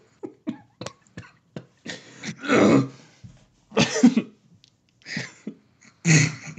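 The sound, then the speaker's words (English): A person coughs and clears their throat several times after something cut their throat. The rough, uneven bursts are fairly loud, with short pauses and small catches of breath between the fits. “Something cut my throat.”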